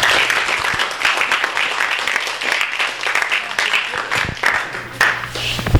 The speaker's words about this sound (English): Let's clap for him.